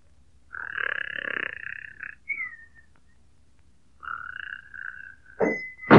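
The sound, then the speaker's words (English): A man tilted back in a chair in the Corn Center store, fast asleep, snores in two rasping, buzzy cycles, each trailing into a thin whistle, and then an abrupt, louder burst of noise cuts in at the end. No one speaks. “We find … tilted back in a chair, fast asleep.”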